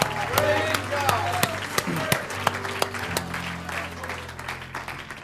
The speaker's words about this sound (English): How about you? Give Him one more hand clap and a shout of praise. Hallelujah.